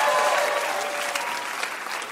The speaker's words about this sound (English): That was a really hard game. You guys are amazing. Big round of applause for our contestants.